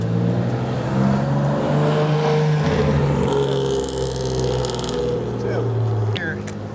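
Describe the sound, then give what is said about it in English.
A steady, droning car engine hums loudly for several seconds, with a rising whine near the end, while voices are faintly audible underneath. “We're just zooming right along. Vroom, vroom.”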